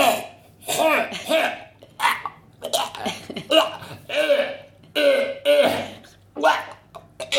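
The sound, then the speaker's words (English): A person imitates a dog retching, with a rapid series of harsh, gagging throat-clearing hacks and heaves, loud, repeated in irregular bursts over several seconds. “He was clearing his throat to the point of vomit.”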